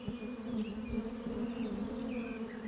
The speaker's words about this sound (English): And one of the things that I was really fascinated in when I first got the bees was the sound that they make.